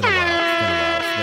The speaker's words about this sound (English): Hold on, let me turn on my air horns. Pardon self, my air horns.